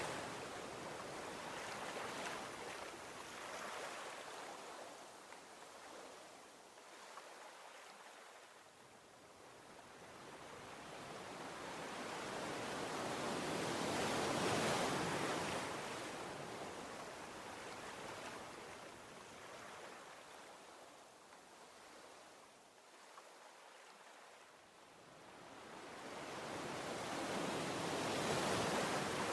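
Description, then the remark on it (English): Ocean waves surge and recede in slow, broad swells of hissing surf, rising and falling in loudness every several seconds, with no voices present. “Keep looking at the ocean as you ponder His glory.”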